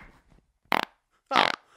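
Two short, loud fart noises, one after another with a brief pause between, each a buzzy, rippling burst; the second lasts longer. A faint murmur comes just before them.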